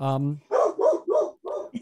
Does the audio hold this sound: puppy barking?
yes